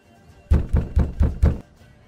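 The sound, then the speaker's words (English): Five firm, evenly spaced knocks on a door in quick succession, dull and thudding, clearly audible over a quiet background with no voices. “Baron will knock.”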